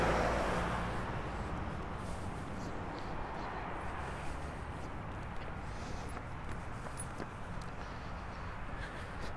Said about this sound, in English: I've seen a few cyclists this morning, and I'll just wait till these cars clear.